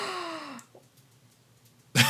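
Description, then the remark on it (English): A breathy gasp that slides into a falling vocal tone, then a stretch of near silence before an abrupt loud burst at the very end. “You're like gasp, and then you're like, wait, I don't know what that means.”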